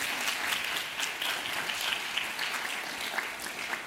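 An audience applauds HUD's senior advisor on climate change, steadily for a few seconds, a dense wash of hand claps at even loudness with no voices over it.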